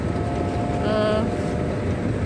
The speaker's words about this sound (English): No, not outside. I'm inside a car.